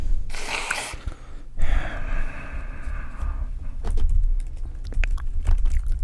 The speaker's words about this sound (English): Ew, and like your sniffs.